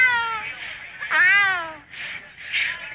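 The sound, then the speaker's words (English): A woman imitates a cat's meow, producing a few drawn-out, rising and falling mewing cries over about three seconds, fairly loud, with no other talk. “She been practicing that because as a cat mom, she sounds just like a cat.”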